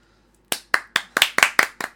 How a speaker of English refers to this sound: We have just created a clap. Three claps. It was like one, two, three. Four-ish. Was it four, maybe?